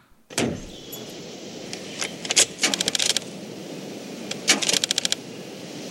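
Keys jingle in a car's ignition, then the starter gives two short bursts of rapid clicking without the engine catching, over a steady low background hum. No one speaks.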